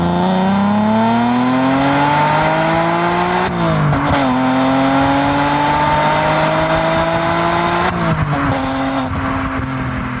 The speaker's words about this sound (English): It was it's been classified as the most glorious sounding V6 engine ever produced by Evo magazine, and it's really, you know, the soul of a Ferrari, but for the masses.